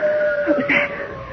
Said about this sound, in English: Howl of a wolf. I wonder if that could be the Wendigo.